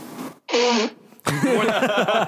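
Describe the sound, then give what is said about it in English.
One loud sneeze bursts out after a brief pause in conversation, then a person resumes talking right away. “I didn't sneeze all day.”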